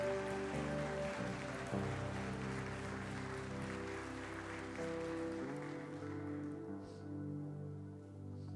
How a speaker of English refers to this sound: Come on and give Jesus one more hand clap of praise.